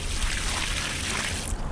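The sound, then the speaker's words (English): A steady, hissing rush of water pouring out of a bucket onto a parking lot paved with Ecocreto, a permeable pavement that lets water run straight through into the ground, so the water disappears instantly; loud and continuous for the whole moment, with no voices. “pours a bucket of water on a parking lot made of Ecocreto. The water disappears instantly, leaving behind just a small wet stain.”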